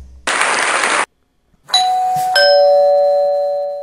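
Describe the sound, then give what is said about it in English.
A doorbell chimes a clear two-note ding-dong, ringing out loud with a lingering decay, preceded by a brief burst of hissing noise and a moment of silence. “Wait, there's the doorbell again.”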